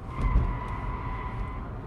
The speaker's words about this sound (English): That is, they're almost silent. That's a Rivian electric pickup tearing through those same turns just as fast.